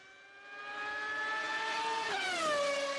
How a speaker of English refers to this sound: Going fast. Oh, I love the old sound of the V12s. V12s.